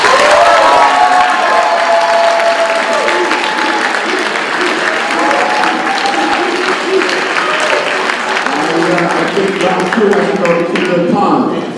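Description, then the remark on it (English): A large debate audience applauds to vote for the view that vaccines are not effective in preventing disease, clapping loudly and steadily for about twelve seconds, with scattered cheers and voices mixed into the dense patter of hands before it thins slightly at the end. “If you believe that vaccines basically are not effective in performing report prevention disease, please applaud.”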